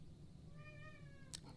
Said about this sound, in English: Just sorry, we have some kitties going off in the background. That's what she said. There are a lot of cats.